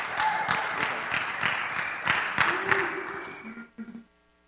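A crowd applauds steadily with many overlapping claps and a few louder hand strikes standing out, then the clapping fades and stops abruptly near the end.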